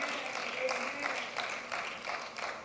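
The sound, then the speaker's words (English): A crowd of people clapping together during a pastor's sermon in a steady, dense patter of many hands, moderately loud and sustained throughout, with some voices mixed faintly underneath. “Well, I ain't clapping about that.”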